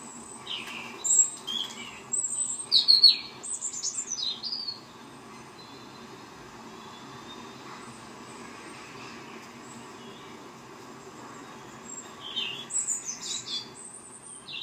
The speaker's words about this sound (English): What are we getting? Robins? Jackdaws. Jackdaws, yes. Jackdaws and robins. Well, this time of year, definitely the birds are waking up. There's more and more birdsong each morning.